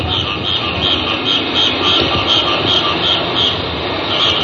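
A dense, steady tropical night ambience in the middle of Bangkok, Siam, between 10 p.m. and 2 a.m.: a high, shimmering insect-like chorus pulses over a continuous low rumble, with an occasional car passing somewhere off in the distance.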